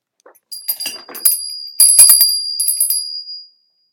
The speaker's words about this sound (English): use of a bell is a good way to disrupt and release energy as it's flowing to, and to bring in a little joy into it, because these cards hit home.